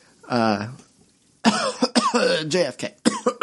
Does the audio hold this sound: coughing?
yes